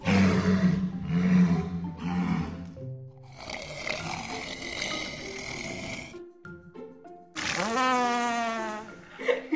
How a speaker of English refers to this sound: Those unbelievable sounds, all made by, yep, walruses. Oh, gosh. And those are just the sounds they make above the water.